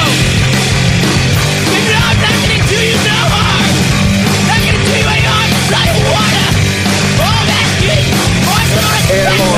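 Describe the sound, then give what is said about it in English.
Loud, dense punk rock plays continuously, with distorted guitars and drums under a raw, strained vocal that sounds like screaming throughout. “That's me trying to get my punk that's rock out.”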